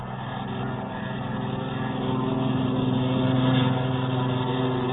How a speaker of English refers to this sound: The colonel's flight took off first.